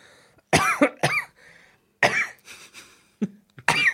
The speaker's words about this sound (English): I'm going to cough.